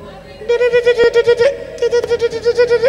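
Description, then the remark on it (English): An alarm clock rings with rapid, steady electronic beeps in two loud bursts, each a quick train of bright, high-pitched pulses, separated by a brief pause. No one speaks. “Then what happens? Alarm clock.”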